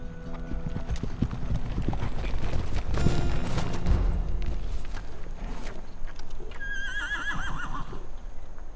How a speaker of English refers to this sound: And this horse ain't winning any roses.